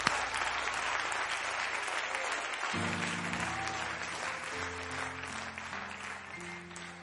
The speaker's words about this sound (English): Come on, clap your hand to the Lord and give Him praise.